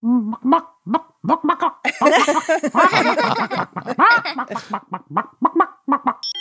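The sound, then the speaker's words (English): A cheetah chirping: a quick, uneven run of high, bird-like chirps and squeaky yelps, fairly loud, with brief gaps between bursts and a denser flurry in the middle. “I can play a sound effect of a cheetah if you want to hear it.”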